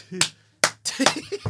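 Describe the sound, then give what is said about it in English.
Two sharp, loud hand claps in the style of Tony Robbins' distinctive clap ring out about half a second apart, followed by a burst of further slapping sounds mixed with low voices talking. “You see that Tony Robbins clap?”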